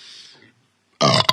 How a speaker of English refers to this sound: would you strongly consider chugging a seltzer and channeling the most demonic belch to blow away that filth?